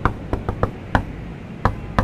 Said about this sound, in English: With the speed of a man in a hurry, that persistent paladin of pragmatism rushes to the gate, where he uses the secret knock of the mysterious marauders.